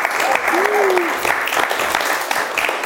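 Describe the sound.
An audience breaks into steady applause for two guests, a dense wash of many hands clapping, with a faint voice or whistle-like tone briefly rising above the clapping.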